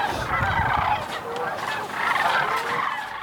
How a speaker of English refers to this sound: First time I saw them, I kind of thought I'd been transported back into like prehistoric times just because they sound like dinosaurs and they just look so different from other birds.